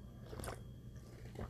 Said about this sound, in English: So let me pause for just one moment because I do want to take a sip of my coffee.